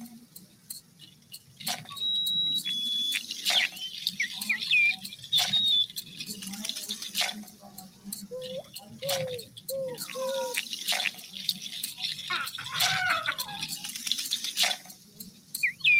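Scattered bird chirps and short whistled notes ring out over a low, steady outdoor rumble, with brief clicks and patters mixed in, all fairly faint.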